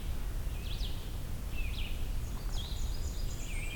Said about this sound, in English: There's the blackbird again.